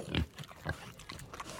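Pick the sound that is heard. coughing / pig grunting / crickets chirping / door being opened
pig grunting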